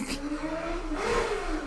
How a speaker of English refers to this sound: Oh, the sports car's back.